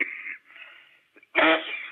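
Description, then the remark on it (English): A raspy throat clearing followed by a short pause, a couple of tiny catches, then a loud, harsh cough burst trailing into wheezy breath, with no talking. “I'm coughing.”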